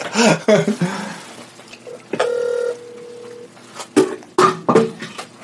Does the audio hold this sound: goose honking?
no